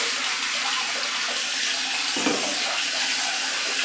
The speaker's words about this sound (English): Now I'm just gonna fill the water, place the shower head. You know what? I'll just let it dangle for now.